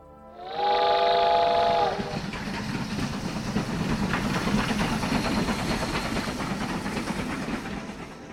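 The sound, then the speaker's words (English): A train whistle blows loudly for about a second, then a connecting passenger train heading out of a small town rumbles steadily along the rails with rhythmic clattering, continuous, no voices. “Well, I got on the connecting train heading out of a small town.”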